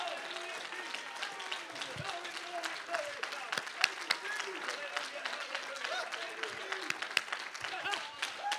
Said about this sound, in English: Right now, somebody clap your hands and give him praise.